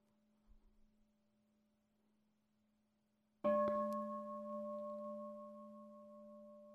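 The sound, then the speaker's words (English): A faint lingering tone hums, then a meditation bell is struck once, sharply, and rings on with a rich, sustained, slowly fading resonance of layered tones. “Notice the word, and then see if you can bring your attention back to hearing the vibration.”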